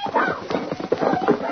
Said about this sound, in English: Stop that horse. I'll get him.